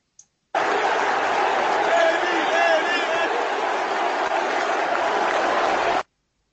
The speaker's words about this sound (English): Now, did you hear what was being chanted by this person in the crowd? It sounded like Messi, Messi, but it obviously isn't that.